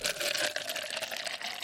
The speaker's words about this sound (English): Speaking of quitting, I'm never going to quit coffee. Can we get a coffee pour going on here? We can get a coffee pour.